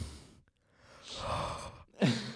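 Heavy breathing into the microphone by a person who is texting: a long, airy exhale followed by a sharper, louder breath, with no talking.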